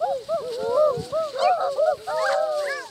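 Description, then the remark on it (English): Several high, overlapping voices hoot in a chorus of short rising and falling calls, people imitating owls: a kindergarten teacher hoots to get her group's attention and the children answer in quick, repeated bursts. “She hoots to get their attention, and they respond.”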